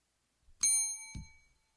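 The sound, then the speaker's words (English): A single bright bell ding rings out clearly and fades over about a second, with a soft low thump shortly after the strike. No one speaks. “Who got that bell?”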